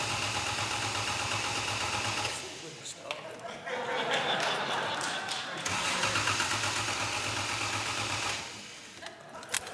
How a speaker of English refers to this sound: So I'm just going to fire it up and just sit to the left a bit. No, the wrong way. If you sit that way, I'll get you covered in smoke. So that's right. Okay, right. You got to listen to this. This is a 2.5-liter fuel-injected straight six engine.